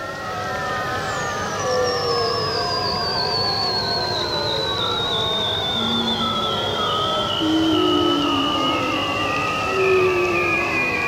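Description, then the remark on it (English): A dense chorus of ringed seals, bearded seals and bowhead whales calling at once in the Arctic ocean off the lead ice at Barrow, Alaska, in April during breeding season: a long, slowly descending high trill over warbling, wavering tones and short low moans, steady throughout with no talking. “As you can hear, there are all kinds of ring seals, bearded seals, and bowheaded whales, and they're just, it's breeding season, so they're just having a party, and there's no ships up there.”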